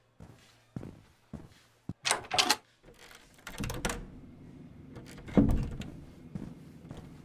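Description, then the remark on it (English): A locked door is tried but stays shut: several sharp clicks and knocks, then louder rattling thuds as it is pushed and pulled against the lock, with a low hum behind. “The door is locked.”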